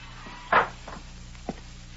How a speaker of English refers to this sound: He opens the sun-warped screen door.